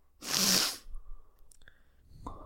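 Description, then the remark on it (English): A single loud, sharp sneeze bursts out, followed by quiet breathing and faint rustling, with a short vocal sound near the end. “The sneezing begins.”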